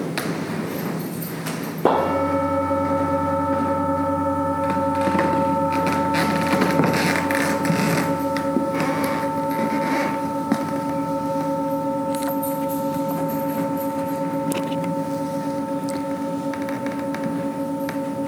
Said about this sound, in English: And so I'm going to ring this bell, and as I do that, just take a deep breath with your arms outstretched.